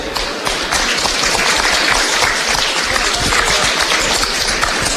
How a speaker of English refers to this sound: And particularly, a special round of applause to our referee and his match officials,